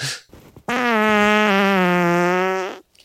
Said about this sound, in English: Can we hear that fart again? That same one.